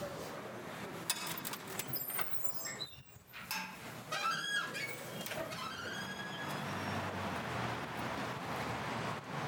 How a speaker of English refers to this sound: You can hear the sounds of the city. There's the crossing noise that when I first arrived in Halifax, I had no idea what it was. We're in the downtown core.